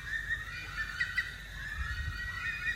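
Bush stone-curlews, several family groups calling to each other on Lamb Island, Moreton Bay, Brisbane, Queensland, Australia, give an eerie, drawn-out wailing call, high wavering tones that overlap and swell throughout over a low steady rumble, with no voices present.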